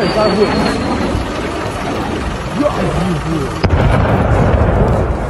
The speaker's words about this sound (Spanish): Esas eran las explosiones, así se escucharon en el amanecer de Occidente, que veía a Ucrania siendo asediada por Putin.